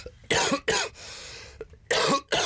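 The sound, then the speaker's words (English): Four loud coughs in two quick pairs with a short pause between them, harsh and chesty, with no talking around them. “I'm going to have a cough.”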